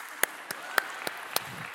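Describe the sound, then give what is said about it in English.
About five crisp hand claps in a loose, steady rhythm, fairly loud, with no talking over them, made by a speaker at Starkey Hills church. “Yeah, I got to clap my hands a little bit.”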